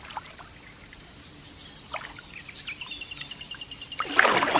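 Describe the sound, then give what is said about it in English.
Water splashes and drips as a kayak paddle dips in, with a louder sloshing stroke near the end, while birds chirp and a steady high buzz of crickets fills the background. “I quickly got lost in the swift dip of the paddle into the water and the buzz of birds and crickets that broke through the quiet.”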